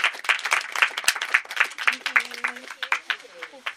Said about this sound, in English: We're around, come talk to us, and give yourselves a huge round of applause for turning up tonight.